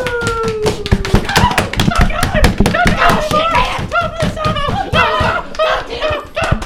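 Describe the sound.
A rapid, steady flurry of close, dull thudding punches landing on a body, dozens of hits in quick succession while voices whoop and shout over them.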